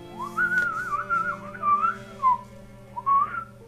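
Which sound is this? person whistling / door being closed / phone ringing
person whistling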